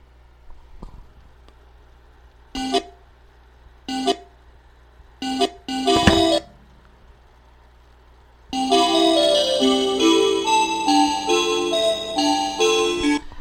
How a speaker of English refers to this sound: Sorry about that. I dropped a piece of my equipment. That's what that loud thump was.